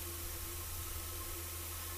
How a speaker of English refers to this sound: Lots of interference mixed with disco music, static, electromagnetic interference.